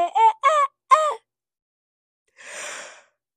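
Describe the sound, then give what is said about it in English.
A person's vocal yawn: three short wavering voiced groans, then after a brief pause a soft, breathy exhale trailing off. “No, that was me yawning.”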